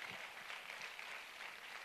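A crowd applauds steadily, a dense, continuous wash of many hands clapping at once at moderate volume with no voices over it.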